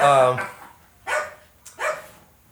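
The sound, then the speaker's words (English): A dog barks a few times in the background, starting with a sharp, tonal yelp and followed by two shorter, rougher barks spaced about a second apart, moderately loud. “don't give dogs chocolate. That's like the worst thing you'd ever fucking do. That's actually what's happening in the background now”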